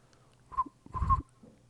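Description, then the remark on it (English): A short, quivery whistle blown through a person's lips, in two brief breathy bursts, the second a little longer, wavering around a single mid pitch with plenty of air noise and no talking. “Get the laughs out and do the whistle.”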